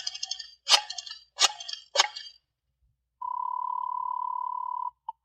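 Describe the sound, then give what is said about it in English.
A telephone being dialed without looking at it: a few sharp, buzzy clicks in quick succession, a brief pause, then a steady, fairly loud single-pitched tone holds for under two seconds before a short final blip. “So, again, just for the fun of it, and without looking at the phone, I dialed 7 times.”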